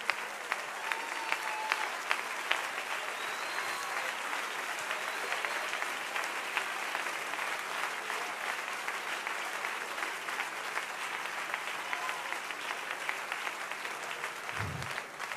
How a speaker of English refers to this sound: I want everybody to stand with me and clap their hands to the Lord. I feel the Holy Ghost here.